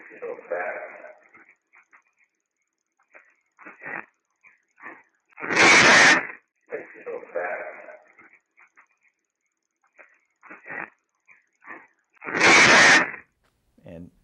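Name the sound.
scream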